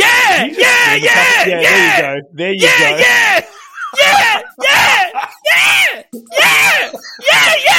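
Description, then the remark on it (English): A woman screams loudly in a rapid series of harsh, strained bursts, about a dozen wailing cries with brief gaps, growing ragged and hoarse toward the end. “Next thing I knew, she was all up on me screaming, yeah. But screaming.”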